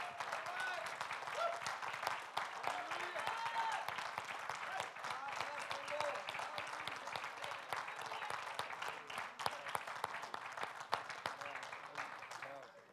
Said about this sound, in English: Hey, let's stand together and give the Lord a great hand clap together. Now let's give him a great hand clap.